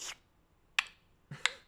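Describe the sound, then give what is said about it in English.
Someone imitates the pop of skin poked by a tattoo needle with three sharp, crisp mouth clicks, spaced unevenly about two-thirds of a second apart, with no talking in between. “I could like hear the skin clapping.”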